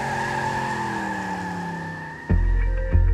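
A car speeds away near the town of Norman, Oklahoma, after letting a man out, its tires squealing in a long, loud, steady screech, followed by two heavy low rumbling bursts of engine noise near the end. No one speaks.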